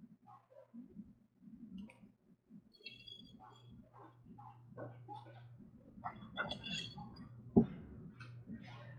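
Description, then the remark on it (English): Dogs bark in short, scattered bursts, growing busier and louder toward the end, over a low steady hum and faint background murmur. “I'm going to pause you because I hear my dogs barking and I need to make it stop.”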